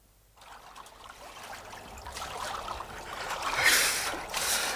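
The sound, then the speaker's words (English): Water sloshes and splashes steadily as people swim through cold water, growing louder over a few seconds, with a brighter splash near the end and no voices. “The water's devilish cold for a bathing party.”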